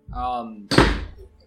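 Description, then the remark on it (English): A chair lands with a single heavy thunk, right after a short burst of voice, then the sound fades quickly with a brief rattle. “And not break the chairs.”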